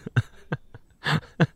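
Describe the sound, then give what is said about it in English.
A series of fleshy slaps of hands on chests, about six irregular hits, some sharp and short, one longer and heavier, with no talking in between. “If you're just listening on audio, we're slapping our titties.”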